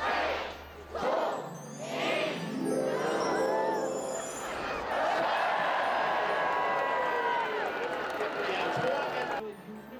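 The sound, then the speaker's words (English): A large crowd shouts together in a few rhythmic bursts, counting down to Christmas tree lights switching on, then erupts into sustained loud cheering and excited yelling that carries on to the end. “Crowds gathered, counting down to the Christmas tree lights switching on.”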